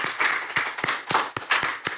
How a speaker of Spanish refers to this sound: Un aplauso a la Virgencita por siempre estar con nosotros.